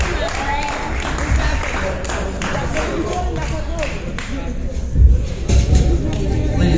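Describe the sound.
A crowd at a five-year anniversary celebration applauds steadily with dense, continuous clapping, mixed with scattered cheers and excited voices, loud throughout, swelling briefly near the end.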